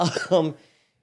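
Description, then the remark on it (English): A brief, gravelly throat clearing in two quick voiced pushes, rough and fairly loud, fading out after about half a second into silence. “Just clear the old throat.”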